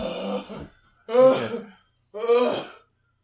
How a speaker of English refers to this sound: Stop breathing so heavy. You're going to make yourself vomit again.